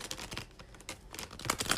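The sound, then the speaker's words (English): A quick flurry of crisp, papery riffling and flicking as a Radiant Wise Spirit Tarot deck is shuffled, uneven bursts of soft clicks running continuously for under two seconds, with no voices. “And that's a good shuffle.”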